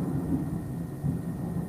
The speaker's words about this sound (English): Is it raining? Yeah. You heard a thunderstorm. Oh, okay. I heard a thunderstorm. I heard the thunderstorm. Oh, God. Okay. Yeah. yeah. In my part of town, it's about to rain.